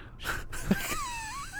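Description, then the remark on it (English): Soft, breathy snoring, a couple of short wheezy inhales with a faint whistling, moaning tone drifting through them, and no talking. “These cute little snores.”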